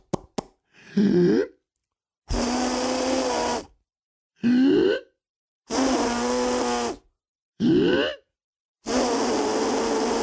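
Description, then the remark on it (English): A person voicing a giant in a story, sitting next to a bell, tries to whistle with his lips but fails. Several loud, breathy blowing bursts alternate with short, wobbly voiced squeaks and grunts, and no clear whistle tone emerges. “The giant said, "Oh, fiddlesticks, I can't whistle."”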